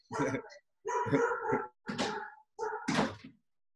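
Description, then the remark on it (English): A dog barks four times in a row, each bark a loud, full burst with short pauses between, with no one talking over it. “Stop focusing on the how to and start figuring out the why I want to be this person, and it'll happen as my dog is barking.”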